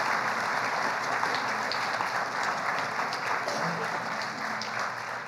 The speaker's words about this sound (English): One more round of applause for our seniors this year.